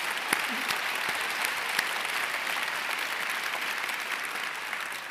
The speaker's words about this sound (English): Come on, let's give him a loud applause. Loud.